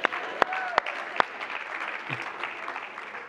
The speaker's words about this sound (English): It takes a while for them to get up here, so let's clap again.